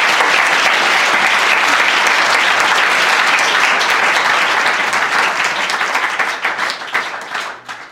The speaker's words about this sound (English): One more round of applause for Michael. Thank you.